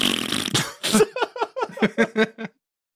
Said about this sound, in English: Oops, I just farted.